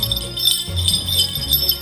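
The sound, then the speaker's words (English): A collection of crotal bells, tried as a warning alarm, jingles continuously in a bright, shimmering cluster of high metallic tones, steady and fairly loud throughout with slight surges, no voices present. “Option one is a collection of crotal bells.”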